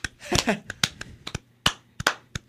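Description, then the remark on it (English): Sharp hand claps ring out in an uneven burst of about ten, some quick pairs and some spaced apart, with a brief bit of voice near the start. “Clap it up”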